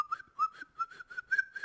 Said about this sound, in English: we're on the same team. Quit whistling.